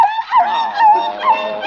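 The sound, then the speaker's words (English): A small Pekingese dog, Princess Lotus Blossom, whimpers during a bath in a continuous, high-pitched whine that rises and dips over a couple of seconds, with no one talking. “Did Dog get that nasty old soap in your eyes?”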